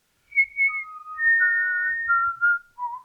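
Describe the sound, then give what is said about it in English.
A short whistled tune of several clear, sustained notes stepping down in pitch, fairly loud with no talking, ending on a lower held note. “It's like a special whistle.”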